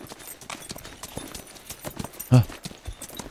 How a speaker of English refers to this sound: These horses are going full tilt at you. And they get to you.